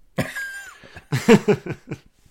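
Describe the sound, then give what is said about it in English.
A drawn-out rough cough followed by a quick run of four or five harsher coughing bursts, loud, with no talking. “I listened back to one of our episodes from last week, and we started with a lot of coughing.”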